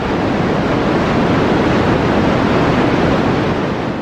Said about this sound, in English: White noise is noise that has all the possible frequencies at the same level. So it's the least structured of sound that there can be